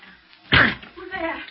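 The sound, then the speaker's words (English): A single heavy, loud crash as a locked, flimsy door is broken in, a sharp splintering thud, followed by a voice starting to speak. “It's locked. But the door's flimsy.”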